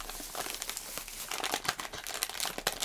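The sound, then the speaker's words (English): A plastic bag of Thai hot chili squid snacks crinkles and crackles continuously as it is handled and pulled open, with dense, irregular rustling bursts and no voices. “We have hot chili squid. All right. And, my top.”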